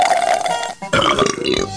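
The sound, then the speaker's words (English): Two long, loud burps into a face mask, separated by a brief pause, the first a steady mid-pitched drone, the second rougher and rumbling as it trails off, in a comedy sketch about KFC. No talking. “Now we say it's burping to your mask smelling good.”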